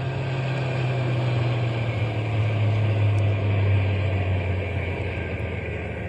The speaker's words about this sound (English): We'll drive on a little bit and then stop the truck. But keep the motor idling so we can take off in a hurry if anybody comes along.